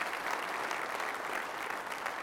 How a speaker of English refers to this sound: If you're thankful for that, somebody clap your hands and praise him.